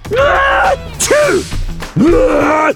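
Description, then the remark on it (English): A voice imitates a huge elephant sneeze, caused by pepper stuffed in the elephant's trunk: three loud, strained vocal bursts with a rising then falling pitch, the last long and drawn out, with short gaps between them. “A huge sneeze erupted from the elephant, shaking Squeaky from head to toe.”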